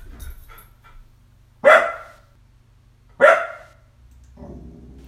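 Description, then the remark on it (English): A dog barks twice, loud, with a pause of about a second and a half between the sharp barks, over a low steady hum and faint background noise. “Unless my dog is around.”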